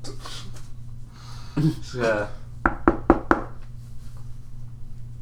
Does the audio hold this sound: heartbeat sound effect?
no